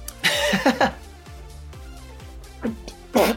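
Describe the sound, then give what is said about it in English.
A loud, breathy sneeze bursts out with a falling voiced tail, then a quieter gasp, and a second sharp sneeze follows. Soft, steadily pulsing background music plays underneath. “That's the first time I've ever heard you sneeze.”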